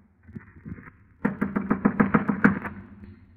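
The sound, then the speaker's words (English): Knocking with knuckles on a door at the top of a stairway: a soft run of quick taps, a brief pause, then a louder, rapid series of about nine hollow knocks in a steady rhythm. “I clenched my teeth, my knuckles, and knocked on the door.”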